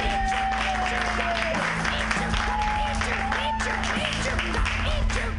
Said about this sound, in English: Funny, funny guy. You guys, clap your hands together.